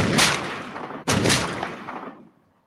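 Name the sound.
gunshot sound effect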